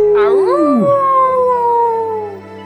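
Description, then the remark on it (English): A man imitates a wolf with one long howl: the voice swoops up, wavers, then holds a sustained tone that slowly sinks and fades over about three seconds. “he'd shift back and he'd let out like a last kind of like a wolf howl, a kind of like a communication back to, you know, back to the she-wolf and the pups, kind of like a toodaloo.”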